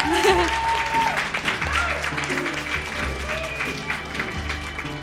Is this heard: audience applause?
yes